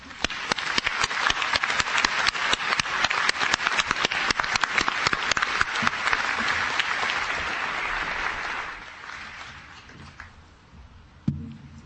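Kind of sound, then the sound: crowd, commencement audience applause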